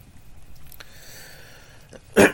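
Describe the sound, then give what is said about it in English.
After a couple of seconds of quiet room tone with faint breathing, a single sharp cough bursts out near the end from a person leading an evening prayer service who has been fighting a cough. “I've been fighting a bit of a cough, but we will get through this.”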